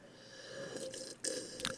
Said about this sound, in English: That was exaggerated slurping, but yes. No more of this.